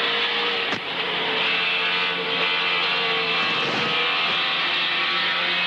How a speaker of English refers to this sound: What about the sound of the car? Was that a Tirana? It was a Toyota Celica. At full noise. That thing was probably a 2-litre four-cylinder Stevie J at absolutely revving its head off.